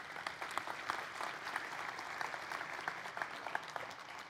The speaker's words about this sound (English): Would you give him a round of applause here?